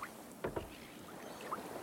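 A small boat rocks on gentle salt water within sight of a city, giving two soft wooden knocks close together and a faint creak, over a quiet, steady wash of lapping water.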